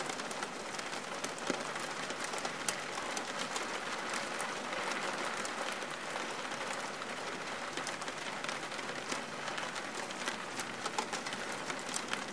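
Steady rain falls throughout, a dense hiss of countless drops pattering on a surface with scattered sharper ticks, even in loudness from start to finish and with no voices.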